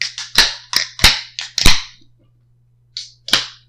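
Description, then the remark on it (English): Beer cans cracking open in quick succession, each a sharp pop trailing into a brief fizzy hiss, then a short pause before two more. No one speaks. “How'd that first crack feel”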